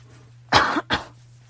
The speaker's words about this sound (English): Hold on, I'm gonna clear my throat.